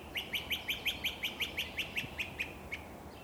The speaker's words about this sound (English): It's late May, and the trees at Florida Lake Park have not yet leafed out, and I have a look at a most beautiful bird. A great crested flycatcher.